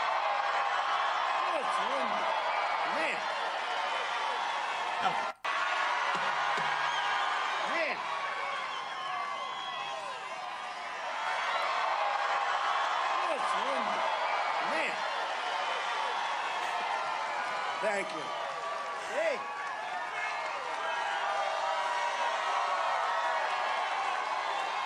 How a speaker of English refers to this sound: The man can make people cheer because he puts on a hat. What is it about him that we just adore so much?